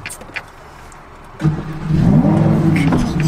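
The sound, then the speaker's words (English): A car engine cranks and catches after a quiet moment, then revs up loudly with a rising, throaty roar that settles into a strong idle. “Should we start it up? Let's give her a little fire up.”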